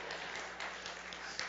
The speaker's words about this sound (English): Technically speaking, I noticed no men were in that applause.